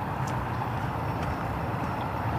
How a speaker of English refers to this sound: All right, here's a big truck full of something.